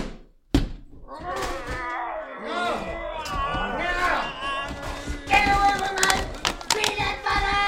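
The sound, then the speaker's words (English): A storm door, shut by the sheriff, slams shut with one sharp, heavy thud near the start, followed by several seconds of loud, excited voices and wailing cries. “Quick, Sheriff, shut that storm door.”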